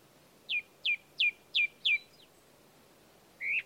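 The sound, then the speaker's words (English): A thrush sings a run of five quick, clear, downward-slurred notes at an even pace, then pauses before adding one last whistled phrase, against a quiet background. “I couldn't see the thrush, but that's what it sounded like.”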